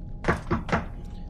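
Three firm knocks on a wooden apartment door in quick, even succession, fairly loud against a low background hum.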